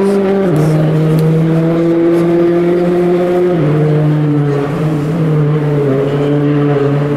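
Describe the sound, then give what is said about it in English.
Race cars coming up a hill on a track, braking hard into a very tight right-hand corner, their loud engine drone dropping in pitch in distinct steps as they shift down, continuous with no talking. “I'm now on the inside of it, so the cars are coming up the hill, braking and doing a very hard right-hander.”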